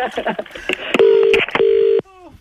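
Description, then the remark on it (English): A phone number being dialed on the FM 104 radio show to ring back a caller who hung up: two steady, fairly loud touch-tone beeps in a row, following a burst of muffled voices and clatter, with a brief falling electronic tone at the end. “I'll ring her back.”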